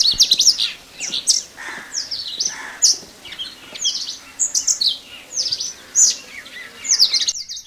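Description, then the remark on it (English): An Indian robin in a backyard sings a series of short, bright whistled phrases and chirps, repeated every second or so, clear, with no voices and a quiet outdoor background. “One of the most common birds in our backyard is the Indian robin. Let's hear it.”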